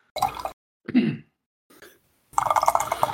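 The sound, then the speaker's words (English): A drink being poured, liquid splashing into a glass in several short bursts with pauses, ending in a longer, steadier pour. “Oh, I was pouring a drinky.”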